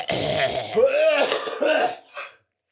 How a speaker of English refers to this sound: You can't have a bunch of mucus. We're going live. You got to cough that all out.